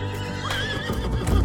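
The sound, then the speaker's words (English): A horse lets out a short, wavering whinny while hooves clip-clop steadily beneath it, moderately loud, with no one speaking. “Bass went straight to the stables, took two of George's prized horses, and left.”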